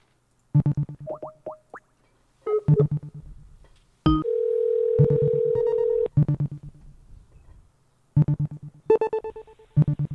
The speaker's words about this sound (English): Let's go ahead and make a phone call.